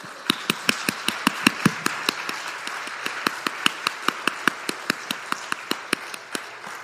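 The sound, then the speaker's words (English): Applause from what sounds like a single pair of hands, given as a round of applause for a group of teenagers who did a lot of work: sharp, evenly spaced claps at a brisk steady rhythm, moderately loud, with no voices. “Like, but I just wanted to give them a round of applause because they did so much work.”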